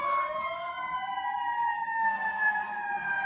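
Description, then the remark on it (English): An emergency vehicle siren wails steadily right outside a window with sliding harmonic tones, loud and close, over a low rumbling background of traffic. “That siren started right outside your fucking window.”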